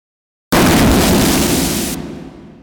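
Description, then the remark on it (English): After half a second of silence, a sudden, loud full-spectrum crash slams in and sustains like a booming horror-film jump-scare stinger hit, then its upper brightness cuts off as the rumble decays. “Loud stingers, bangs, crashes, or other explosions of sound that are meant to cause what is known as a jump scare.”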